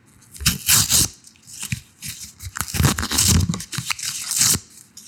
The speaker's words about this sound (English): I'm going to rip up this card. I thought ripping paper would be a good one.